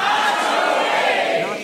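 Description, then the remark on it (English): A large audience shouts the answer "Nacho Rage" in unison, a loud, dense wall of many voices held steady for under two seconds before tapering slightly at the end. “I love a whole audience of people, though, yelling Nacho Rage.”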